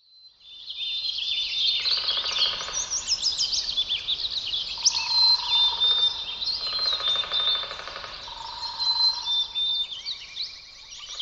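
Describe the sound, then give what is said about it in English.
A dense chorus of birds sings and chirps continuously, with bright overlapping high-pitched trills and whistles, steady throughout, with no voices present. “Within the stories told by the sounds of bird species are further riches.”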